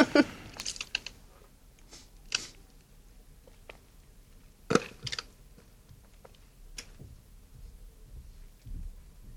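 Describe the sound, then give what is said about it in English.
Quiet slurping sips from a large Big Gulp cup, with short wet bursts scattered among faint clicks and handling noises and a brief louder gulp near the middle. No one speaks. “I'm doing, I might take a sip here of my big gulp.”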